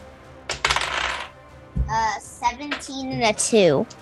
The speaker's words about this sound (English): Both 20-sided? Yes, both 20-sided dice. Roll them here so they don't disappear.